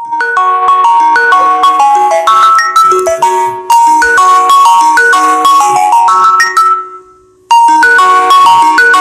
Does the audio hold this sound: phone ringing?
yes